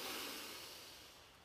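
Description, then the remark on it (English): A single deep breath drawn in during a yoga practice before singing, a soft airy hiss that starts strongest and gradually fades over about a second and a half, with no talking. “Breathing in to begin.”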